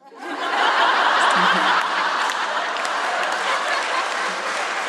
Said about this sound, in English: I don't think you should be applauding that. Why are you applauding a woman saying, I want to marry for money on a feminist podcast?